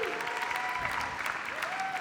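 An audience claps steadily to welcome a guest speaker, a dense, continuous wash of applause, fairly loud throughout, with a few faint whistle-like tones rising over the clapping.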